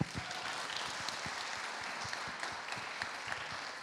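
A round of applause from a group: many hands clapping in a dense, steady patter that holds at an even level for a few seconds, with no voices over it.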